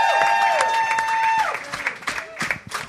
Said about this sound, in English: Hey. Hey. Didn't want that to stop. I was really enjoying that. Yeah. You can keep clapping if you like.